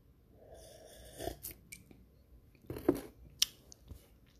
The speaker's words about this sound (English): But give me a little sip.